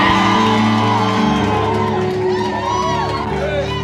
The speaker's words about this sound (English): Come on, give the Lord a mighty shout and scream.